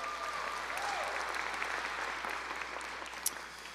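An audience claps steadily, a dense wash of overlapping hand claps at an even level throughout, with a faint whistle-like tone briefly rising above it early on.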